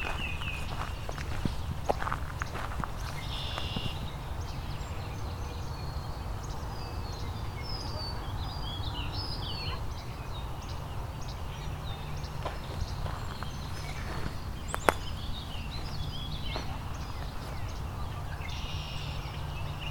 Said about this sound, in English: There's a Tennessee warbler again.